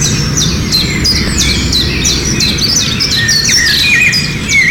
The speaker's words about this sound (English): That's a rare thrush.